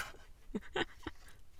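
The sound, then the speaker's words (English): Three quick, soft rustling scrapes of a paper sheet sliding across a desk, fairly quiet, with brief pauses between them and no voices. “You can move the paper if you really want to. It has paper noise.”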